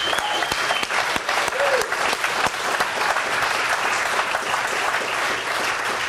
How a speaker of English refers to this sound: So clap your hands then and shout for joy.